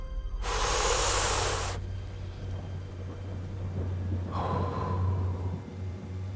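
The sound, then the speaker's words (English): A dying father's last breaths: two slow, ragged breaths, the first a loud harsh rush of air, the second weaker with a faint rasping tone, over a steady low hum. “And the father breathes his last breaths.”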